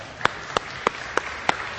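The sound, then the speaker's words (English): An audience at Victory Church applauding its volunteers: a hissing wash of steady clapping with five sharp, louder claps standing out at an even, brisk rhythm, and no voices. “Let's applaud each other.”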